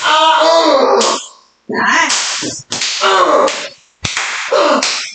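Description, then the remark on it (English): A dragon tail whip swishes through the air in several loud strokes, one ending in a sharp crack, with excited voices mixed in between the lashes. “The trick with the dragon tail is you have to have good aim.”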